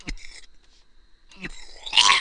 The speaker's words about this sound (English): All right, excuse me. I know my coughs are loud. I got to stop fucking coughing into the mic.